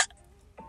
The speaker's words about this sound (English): Did you just hiccup? Maybe.